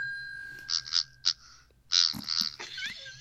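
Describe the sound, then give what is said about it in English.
A video game sheep sound effect: several short, raspy, sputtering bursts, a few quick ones then a longer wet-sounding run, over a faint steady high-pitched tone. “Sounds like a wet fart now, your sheep.”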